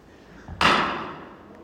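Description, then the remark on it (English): A chair breaks with one loud, sharp crack, followed by a short rattling decay as the pieces settle; no voices are heard. “just broke a chair.”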